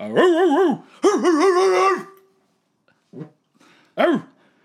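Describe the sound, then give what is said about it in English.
A dog whines and whimpers in two long, wavering cries, then gives two short yelping barks after a pause, in response to a dog call; loud, with no talking. “I guess somebody pulled their dog in.”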